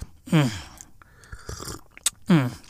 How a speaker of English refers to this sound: Take a sip of my tea.